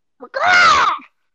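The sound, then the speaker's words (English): A person's voice mockingly imitates a bird's caw: a brief clipped note, then one loud, drawn-out nasal cry whose pitch rises and falls, heard alone without other talk. “So Bazel runs up to this recently dead bird that was grabbed and thrown to the ground, picks it up, and looks at the bird that Quill is immediately adjacent to, holds it up above her head in the air, and just mockingly caws at that bird.”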